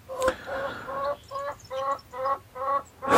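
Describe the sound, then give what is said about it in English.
Chickens cluck insistently and impatiently in a run of five or six short, harmonic squawks with a steady, agitated rhythm and no voices over them. The clucking probably comes from a chicken named George. “The chickens, however, are getting very impatient.”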